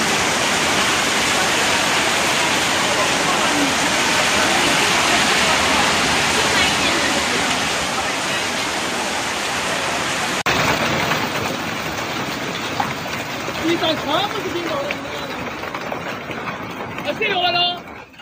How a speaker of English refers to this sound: So this was a giant hailstorm in China, and it ended up looking like this.